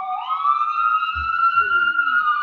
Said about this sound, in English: That's New York. If you don't hear this kind of stuff, this is not New York. New York has sirens all the time. From ambulance, fire engine, police car, all the time.